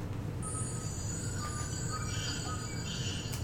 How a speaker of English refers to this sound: You hear the birds in the morning. Yeah, it wasn't the birds I was looking for, but you hear birds chirping outside.